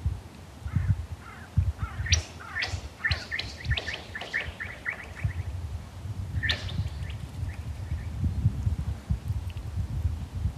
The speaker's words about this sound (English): And children were skimming ice on top of the frozen lake.